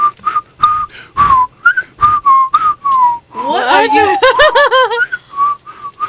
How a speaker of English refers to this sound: So let's just all whistle with it.